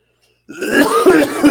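A loud bout of throat clearing breaks into a rough cough, starting abruptly after a moment of silence and rumbling on for about a second without any speech.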